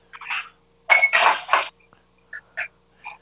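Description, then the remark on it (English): Ice being crushed with a hammer inside a Lewis bag: a burst of heavy, crunchy thumps, then a few lighter, scattered knocks with a faint icy rattle. No one speaks. “Yeah, it's crushing ice, but those bags are cool.”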